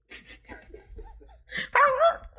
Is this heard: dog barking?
yes